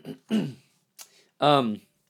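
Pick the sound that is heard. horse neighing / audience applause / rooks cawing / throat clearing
throat clearing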